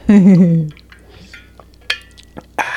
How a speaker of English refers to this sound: I was trying to do that stealthily, but then the little tab went clink, and I'm like, oh, fuck.